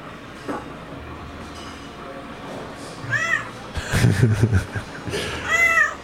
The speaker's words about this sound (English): And what does this meow mean? It means I'm hungry. Give me the food.